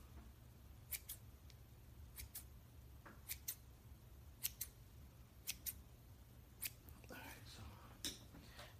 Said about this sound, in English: These small scissors to get a little bit closer.